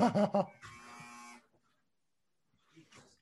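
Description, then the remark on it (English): A clothes dryer buzzer sounds off: three quick harsh pulses, then a steady electric buzz lasting about a second before cutting out. A faint voice murmurs briefly afterward. “I've got a buzzer that keeps going off here for a second.”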